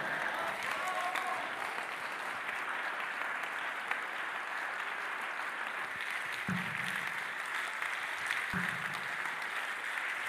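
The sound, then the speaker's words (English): A large crowd claps and slaps hands steadily throughout while being told to say 'back', a dense, continuous patter, with a few brief low bursts of voices rising underneath near the end. “as you slap your hand, say back, back, back, back.”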